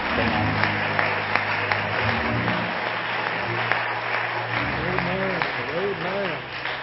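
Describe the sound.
An audience bursts into sustained hand clapping, a dense, steady patter of many hands, with scattered voices and a singing tone rising through the applause toward the end.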